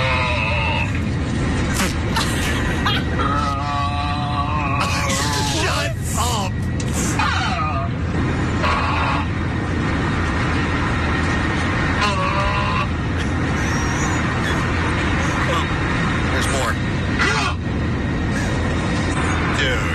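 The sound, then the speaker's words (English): Eerie, wavering moans come over an airplane's intercom public announcement system during a flight, in several drawn-out bursts rising and falling in pitch above a steady, loud cabin roar, with murmuring voices underneath; filmed by a passenger. “there is an extremely irritating sound coming over the public announcements”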